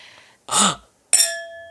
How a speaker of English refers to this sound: That is the chime that rings when the door has a person. There's somebody at the door. There's two people at the door.